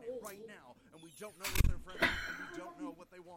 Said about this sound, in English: Can you shut the door, please?